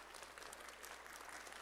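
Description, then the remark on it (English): Soft, polite clapping from a small crowd, a so-called golf clap: a steady patter of light claps with no cheering or voices, fairly quiet and even throughout. “That's what I call a golf clap.”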